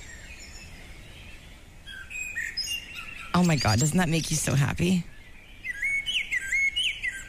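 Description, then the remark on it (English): Birds chirp and trill continuously in high, overlapping songs outside a front door on a spring morning, with quick warbling phrases and sharp tweets. A woman speaks briefly in the middle, her voice rising over the steady birdsong. “They're going, no, I'm not going to sing. I'm not going to sing. And now they're here. They're back.”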